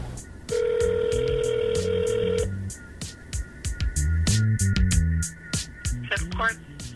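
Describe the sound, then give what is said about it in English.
A steady telephone tone holds for about two seconds after the other party hangs up, then breaks off into shorter phone signals over low, muffled voices, like a line being redialed and ringing again. “Did she hang up on me? She hung up on us.”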